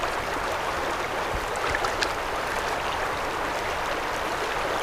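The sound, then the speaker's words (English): A stream of rainwater flows steadily into a lake, a continuous rushing and babbling with faint trickles on top and no voices throughout. “In the second phase, the rainwater collects into streams that flow into a lake, making the lake have a higher level than normal.”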